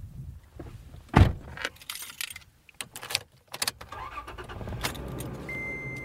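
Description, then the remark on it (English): A pickup truck door thuds shut, followed by keys jangling and assorted clicks and rustles as someone settles into the truck, ending with a steady low interior hum and a faint tone. “pile into his pickup truck and drive a few miles down a dirt road to another type of wildlife corridor.”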